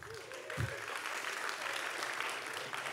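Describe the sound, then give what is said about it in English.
Steady applause from an audience at a Long Now Foundation talk, a dense wash of many hands clapping, with a brief low thump near the start. “Thanks for my wife for starting that applause.”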